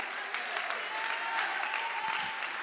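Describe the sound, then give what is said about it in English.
An audience claps together to show they believe the preacher's words, a steady, dense wash of many hands, fairly soft and unbroken for a few seconds, with no voices standing out above it. “God, I wish somebody would clap if you believed it.”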